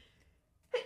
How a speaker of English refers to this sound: Bless you. I tried to fight it, but I lost.